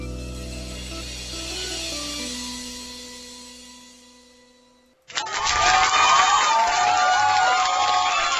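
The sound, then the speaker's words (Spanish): A held musical note from a contestant's performance on the show Cante y Gane fades out, then a loud burst of crowd cheering and applause erupts abruptly and continues steadily and densely through the final few seconds. “Aplausos y aplausos”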